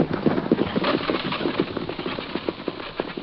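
horse hooves clip-clopping

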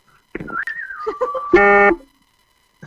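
buzzer sound

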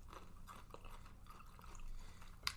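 chewing food

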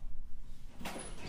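door opening

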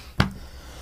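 coughing fit

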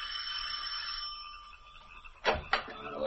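doorbell ringing

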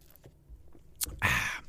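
sipping coffee

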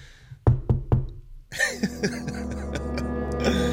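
knocking on a door

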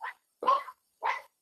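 german shepherd dog barking

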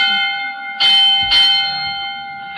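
bell ringing

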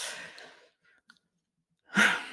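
sneeze

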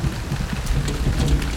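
storm with heavy rain

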